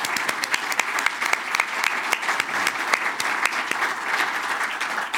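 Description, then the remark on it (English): A large studio audience at the Oasis gives a sustained round of applause for everybody, dense, steady clapping with scattered sharper claps standing out, holding at an even, fairly loud level throughout without any talking. “Let's get a huge round of applause for everybody.”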